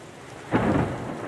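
A steady hiss of heavy rain fills the air during a storm at sea, then a deep rumble of thunder swells and rolls on beneath the downpour. No voices.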